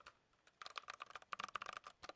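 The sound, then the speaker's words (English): Rapid, uneven clicking of keys on a computer keyboard in an office, fairly crisp, with bursts of typing and brief pauses, no voices. “So I just picked something up in my office here. I know those listening can't actually see it, but it is a keyboard.”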